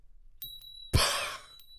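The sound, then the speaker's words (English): A tiny bell gives a faint, muted, high-pitched ring that holds steady throughout, while a soft breathy whoosh swells up partway through and fades. Nobody speaks. “You jangle your pack and you hear the muted ringing of a teeny tiny bell.”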